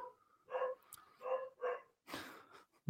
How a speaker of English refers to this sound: Oh, my dog's going mad. I do apologise. Right, that's him saying, fucking move on, lads.